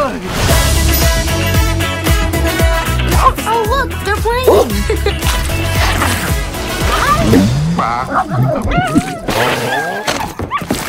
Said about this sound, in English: And the sounds you hear may be dogs.